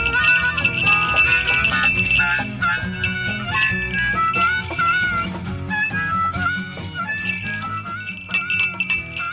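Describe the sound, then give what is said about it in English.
A small bell jingles repeatedly over a dense, ringing musical backdrop, fairly loud and steady for the whole stretch, with no voices. “I only have one bell.”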